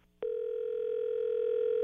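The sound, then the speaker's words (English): A telephone dial tone clicks on after a brief quiet moment and then holds as a steady, unbroken hum, clear, with no voices. “Okay, I'll call you back.”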